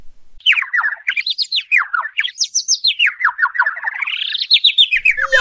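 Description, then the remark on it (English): A bird tweets in a quick, continuous run of bright chirps that rise and fall in pitch, clear with no voices, lasting several seconds. “I think you've got it. It's a bird.”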